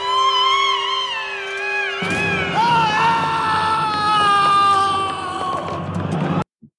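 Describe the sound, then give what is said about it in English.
Cats yowling while play-fighting: loud, drawn-out wavering wails that bend up and down in pitch, joined partway through by a rougher, overlapping growl before cutting off abruptly. No one speaks. “Our cats just made a sound. Oh, our cats are battling.”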